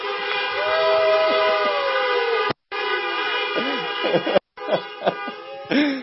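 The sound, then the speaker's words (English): Many car horns honk together for Jesus in a long, loud, overlapping blare, breaking off twice briefly before starting again, with no talking over them. “Why don't somebody honk their horn for Jesus?”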